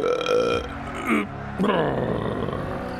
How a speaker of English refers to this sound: Just burped on live TV.